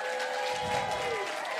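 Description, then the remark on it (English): An audience applauds two graduating students as they come up to get their certificates, a dense, even wash of many hands clapping that holds its loudness throughout, with faint tonal ringing underneath and no voices rising above it. “And so will you guys, we're going to have them come up, get their certificates, and if we can applaud them, there's two students,”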